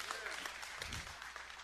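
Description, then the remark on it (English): A crowd claps and cheers for Jesus in a steady, dense burst of applause, with a few voices shouting over the continuous patter of hands. “Yeah, okay, let's go ahead and cheer Jesus.”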